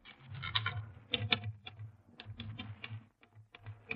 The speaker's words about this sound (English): Now, let me at that typewriter for a minute.